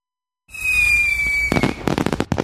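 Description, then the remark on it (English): A shrill, steady whistle of a launching firework is followed by a rapid series of loud, sharp bangs and crackles, without any voices. “Many July 4th fireworks exhibits are canceled this year.”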